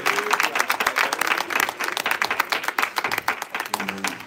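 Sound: audience hand clapping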